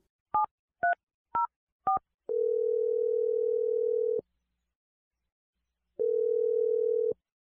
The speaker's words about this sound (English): I'm going to dial her dad's phone number and let you make your Awkward Tuesday phone call. Here we go.